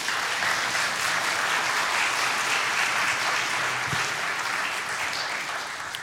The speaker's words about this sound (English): Give him a round of applause, please.